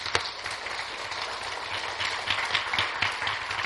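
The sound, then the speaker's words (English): A church audience claps their hands together in praise in a dense, continuous burst of applause, many overlapping sharp claps merging into a steady, fairly loud wash with no voices heard. “Come on and give my hand clap of praise.”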